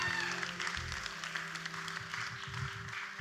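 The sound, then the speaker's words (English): A crowd applauds for Experience Church steadily for a few seconds, a dense wash of clapping hands at an even loudness, with a low sustained tone humming underneath. “Can we give a round of applause for Experience Church?”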